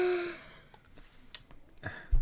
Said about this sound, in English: Could you not be so expressive in your yawn, homeboy?